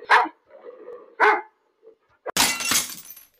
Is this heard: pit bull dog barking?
yes